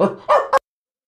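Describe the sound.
A voice imitates a dog barking: three quick barks in a rapid run, the first drawn out, the last two short and sharp, followed by silence.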